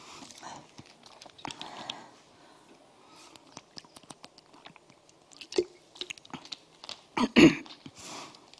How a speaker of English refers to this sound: Just have a piece of water. I will. There's one to look at while I have a sip of water.